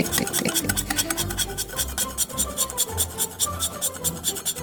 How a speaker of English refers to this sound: I will get this, and I'm going to start shaving my chocolate. You shave the chocolate.